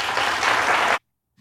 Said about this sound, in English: Yes, applaud. Applaud that absolute nonsense.